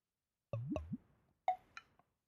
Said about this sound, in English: Now you hear that blub, blub, blub. That is a Corona.